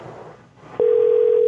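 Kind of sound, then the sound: signal or alarm, telephone dial tone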